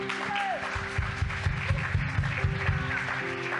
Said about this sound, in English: Yeah, let's clap for that.